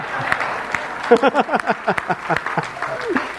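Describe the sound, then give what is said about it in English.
Scattered applause from an audience, irregular claps rather than a sustained ovation, with voices talking and reacting loudly over the clapping. “I don't know whether to clap on that or not.”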